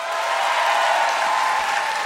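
A crowd claps steadily in a dense, continuous wash of applause with no pauses, moderately loud throughout, with no talking over it, voting by applause on whether someone's hair is a wig.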